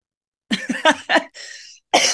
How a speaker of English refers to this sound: So if they have a problem with you coughing, they can just chill out, okay?